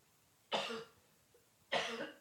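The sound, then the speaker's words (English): Two separate coughs roughly a second apart, each a sharp, breathy burst that trails off quickly, fairly loud against a quiet background, with no talking. “Oh, I can't even get a satisfying cough now.”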